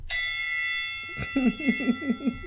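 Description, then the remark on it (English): An engraved hand bell marked 1783, taken from a market, is struck once, loud, its bright metallic tone ringing out and slowly fading while a voice breaks in with a short burst of rhythmic sounds. “Do you love the bell? I love that bell.”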